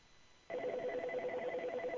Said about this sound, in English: Answer that phone. I'm sorry? Answer that phone. There's a ringing phone. Answer it.